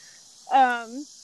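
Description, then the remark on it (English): A steady, high-pitched buzz of cicadas drones outdoors for the whole stretch, while a short human vocal sound rises briefly over it partway through. “Yeah, there's cicadas outside. We're outside recording, and there's cicadas.”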